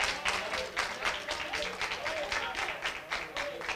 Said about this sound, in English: Amen. Thank y'all for clapping. That meant a lot to me right there.